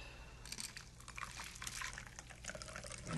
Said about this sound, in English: So what I'm going to do is put this all together. My glass is now chilled. Honey, lemon, gin. Sounds good. It really does. And then I'm going to strain it into the glass.